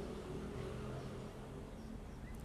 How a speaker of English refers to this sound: Can you hear all the cars passing by? It's another rush morning, huh?